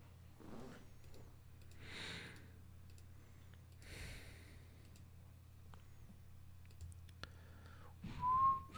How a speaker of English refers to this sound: Hey, are you whistling?